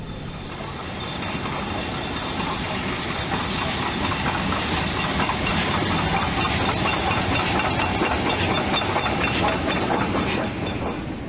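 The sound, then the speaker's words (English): A passenger train rolls steadily over the Portobello Junction and past the Notting Hill sidings in London, loud, its wheels clattering rhythmically over rail joints and points beneath a constant rumble and hiss, with no voices. “The train now passes over the Portobello Junction and passes the Notting Hill sidings.”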